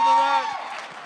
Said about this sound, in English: Why don't you just give a big welcome and round of applause for my man